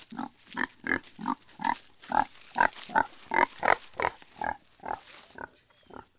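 Piglets on a farm grunt in a quick, steady series of about fifteen short, throaty bursts, fairly loud, with no talking over them.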